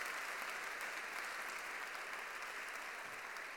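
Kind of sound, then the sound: crowd, audience clapping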